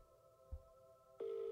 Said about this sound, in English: It's ringing. How many rings do we give? He's probably sleeping.